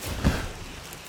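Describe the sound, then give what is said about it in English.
Rain falling as a steady, even hiss that fills the short clip, with one brief low thump near the start and no voices. “Should we abandon all plans that we have and make a spooky podcast episode because of the rain?”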